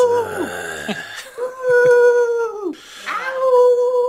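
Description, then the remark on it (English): A person imitates a howl: a few loud, drawn-out wavering howls, each sliding down in pitch at the end, with short breaks between them. “You sound like the fucking guy from Three from Hell that didn't stop howling, which I forgot to mention.”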